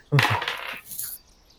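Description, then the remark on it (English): Dice clatter sharply onto other dice, a quick burst of rattling clicks, then a lighter tap and skitter as one tumbles away and falls off the table. “I dropped one 5. Dice into my other dice, and now it fell off the table.”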